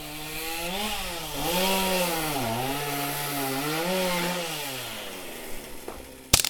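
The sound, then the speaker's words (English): A chainsaw runs steadily, its engine pitch rising and dipping as poachers cut through the horn of an animal named Nano, with no voices, then cuts off into a couple of sharp clicks. “The chainsaw fell silent as Nano's horn fell to the dust, and the virtual shutter and faux advancing film sounded overloud in the sudden silence.”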